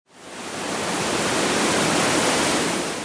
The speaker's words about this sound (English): A waterfall is when a river runs right off a cliff or a hill